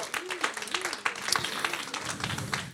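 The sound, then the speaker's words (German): An audience gives a round of applause to the Lord, with dense, steady clapping that holds at a fairly even level throughout, with a few voices calling out underneath. “Komm, wir geben dem Herrn einen Applaus.”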